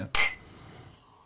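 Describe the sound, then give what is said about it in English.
A single bright clink of glasses of toasted-coconut cocoa blonde beer touching in a toast at a brewery, sharp, with a short ringing tone that fades within a fraction of a second over a quiet background. “Yeah, cheers. Salud. Cheers. Salud, guys.”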